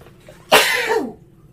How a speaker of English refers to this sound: I sneezed.